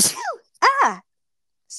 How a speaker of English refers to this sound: that came out of nowhere. That's okay. Bless you.